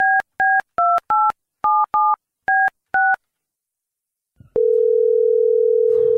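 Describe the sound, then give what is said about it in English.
A phone number in North Korea being dialed: eight crisp keypad tones beep in quick, slightly uneven succession, then after a pause a click and a steady, continuous line tone hums to the end. “I mean, you've called North Korea.”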